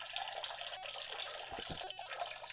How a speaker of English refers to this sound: Whoa, we ran into a waterfall there. Did someone piss and forget to turn their microphone off? I was pouring water. Okay. And I heard ice cubes in there. I thought they were kidney stones. Yeah, they could have been stones.